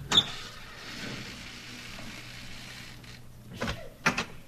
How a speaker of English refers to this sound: Come on, we'll go in through the front door. I'll open it.